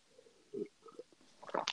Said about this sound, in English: I am currently sipping on some of that Angry Orchard.